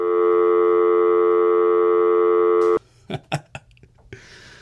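A loud, steady telephone busy signal drones on the line for nearly three seconds, then cuts off abruptly, followed by a few sharp clicks and handling knocks on the line.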